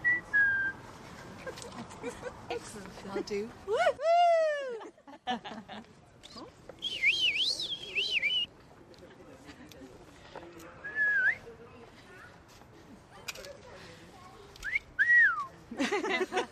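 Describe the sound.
Several people whistle confidently in playful bursts: quick swoops, rising and falling glides and a warbling trill, fairly loud over a murmur of background voices and noise.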